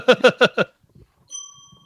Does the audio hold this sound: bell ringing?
yes